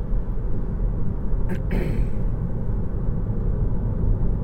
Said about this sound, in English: Go, go, go, little black Honda. It's miserable out here. The roads are wet. You're getting thrown up mud.